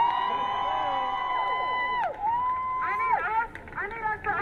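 A crowd at a protest rally for justice for Jamal roars and cheers in answer to a speaker's call to make noise, with loud overlapping shouts and high whooping cries that rise and fall in pitch over a few seconds.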